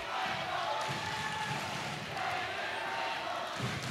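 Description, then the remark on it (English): A raucous Piedmont crowd, travelled from Unionville, roars steadily for the whole stretch at a basketball gym game against Sun Valley in the third quarter, a dense wash of cheering and shouting with a few higher yells poking through, loud and unbroken. “Piedmont crowd is raucous as they travel all the way from Unionville.”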